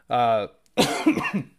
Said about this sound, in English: Stank cough's never going to go away, guys.